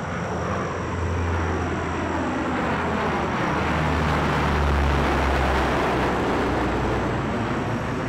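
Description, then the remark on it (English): A large 80-foot-long four-engine Hercules military transport plane drones steadily and loudly, its deep engine hum and broad roar holding throughout with no voices present. “These were big aircraft, 80-foot-long, four-engine Hercules military planes, which had to land without being seen.”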